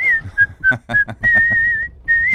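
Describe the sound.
Someone whistles a short melodic phrase, the clear tones broken into several notes with brief pauses, plus one longer sustained note near the end.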